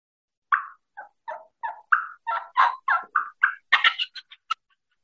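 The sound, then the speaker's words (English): An imitated turkey hen's fly-down cackle as she flies off the limb: a string of sharp yelps that quicken and climb into a hurried, excited burst before stopping abruptly, with no talking. “Somebody just gave the hen a swift kick in the ass, right? And out she comes. Out to the limb she comes.”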